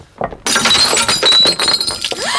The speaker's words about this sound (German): Jemand hat einen Stein ins Fenster geworfen.